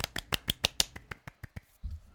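A golf clap: about a dozen light, crisp hand claps in a quick, even patter that gradually slows, ending with a dull low thump. No voices are heard.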